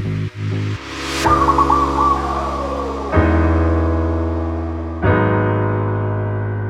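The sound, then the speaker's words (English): A sampled call of a bird that landed on a quarantine hotel balcony glides downward over sustained synth chords in a music track, with new chord hits landing every couple of seconds and no voices. “I was in a quarantine hotel, and there was a bird which landed on my balcony, and I decided to sample it and build this whole song around it.”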